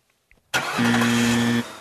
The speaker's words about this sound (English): Was that a car starting? What was that? I have no idea.